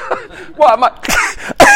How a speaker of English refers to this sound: Why am I coughing?